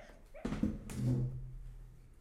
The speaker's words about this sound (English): That little background noise was our dog dreaming in the background. He was literally going.